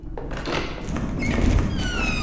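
A heavy door slides open with a steady grinding rumble and thin, rising squeaks over about two seconds, loud, with no one speaking.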